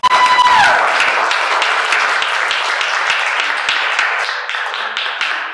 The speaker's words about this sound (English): Did you guys make some noise? Let's give it a round of applause.